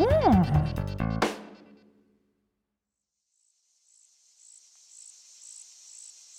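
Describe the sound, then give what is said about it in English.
A brief tonal musical flourish cuts off into silence, then crickets on a hot summer day fade in, chirping in a steady, high-pitched pulsing rhythm that continues on its own at a moderate level. “We hear the sound of crickets on a hot summer day”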